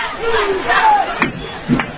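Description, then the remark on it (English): A football stadium crowd at a game roars and yells steadily, with individual shouts rising above the dense wall of cheering and a couple of sharp bursts near the end. “As the audience and crowd starting to get back into this.”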